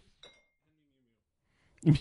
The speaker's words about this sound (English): Mew Mew, by the way, for those at home, is our bottle opener. It's shaped like Mjolnir, the hammer of Thor. It opens beer bottles.